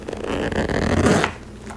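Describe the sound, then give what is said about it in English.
The zipper of a crossbody bag with a long strap is pulled closed in one continuous rasping stroke lasting just over a second, ending abruptly into quiet. “Zip it.”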